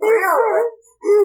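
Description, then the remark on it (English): A dog lets out a loud, wavering howl lasting over half a second, then after a short pause a second sharp, bark-like cry begins, fairly loud. “My dog Sherry is dead. She's not, she's right here!”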